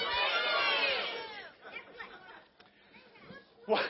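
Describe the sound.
An audience bursts into loud, overlapping shouting all at once, each yelling their favorite app on a count of three, a dense wash of many voices for about a second and a half, then fading into scattered chatter and a few trailing calls.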